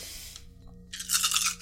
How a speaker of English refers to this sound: And then I'm gonna roll an ass load of dice.